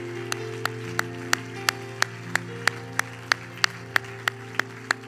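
An audience claps to the Lord in steady unison, about fifteen sharp, crisp claps at an even brisk tempo, over a sustained low keyboard or organ chord that hums underneath throughout.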